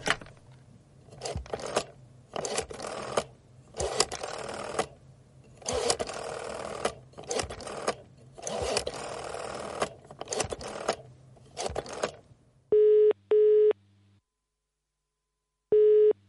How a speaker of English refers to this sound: Why does it sound like I'm using a phone in the UK?